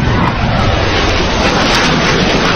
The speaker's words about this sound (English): Those planes are moving much faster. I know, but you do see it in the background. Once they pan over, it's moving a lot faster. You could see it when this first jet goes over. It's way off in the distance.